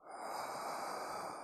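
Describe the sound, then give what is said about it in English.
A long, deep breath rushes out in one steady, airy stream during a breathing meditation, fairly loud, lasting over a second with no talking. “Deep inhale in through the nose. Exhale out of the top of the head.”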